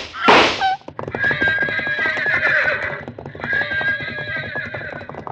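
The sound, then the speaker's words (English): Horses rear at gunshots, neighing loudly and shrilly, with long quavering whinnies over a rapid, uneven clatter of pounding hooves, starting with a sharp burst of noise. The commotion is continuous, with no voices. “Horses reared at the shots.”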